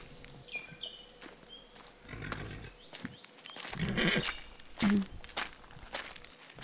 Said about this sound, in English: Walking through the mango trees, the horses are there. Taut throats like pluck strings as they suck cool water from the basin. The bay stomps afoot, a moony rump heaves, and so the day exhales.